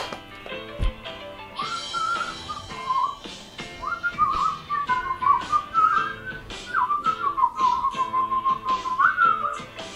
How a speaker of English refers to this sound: Until now, I wasn't sure if this whistling competition would be legit or not